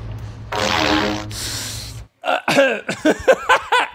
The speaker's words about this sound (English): I'm at Home Depot with the pipe and I'm going to fart in it.